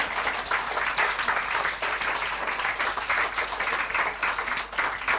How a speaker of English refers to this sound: Now, I'm going to stop there and see if there's any questions. You can clap me if you like, because that's the bit of that bit.